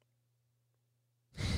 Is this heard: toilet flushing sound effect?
no